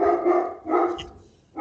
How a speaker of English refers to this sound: You got a dog there weighing in on this thing. He's excited too.